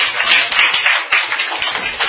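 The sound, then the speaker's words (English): A class claps together, a dense, steady patter of many hands lasting about two seconds at a fairly even loudness, with no voices over it. “Okay, with a round of applause for”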